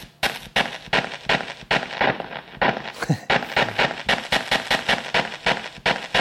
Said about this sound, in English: And we picked out another crackle to use. That one? Yeah. With the tail or no?